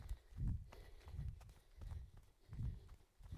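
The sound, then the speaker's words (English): Steady running footsteps over changing surfaces, hill and sand: a repeating pattern of heavy, low thuds about every two-thirds of a second, with scattered scuffs and crunchy clicks from the ground between strides. No one speaks. “You feel or hear my feet change as I go on different surfaces.”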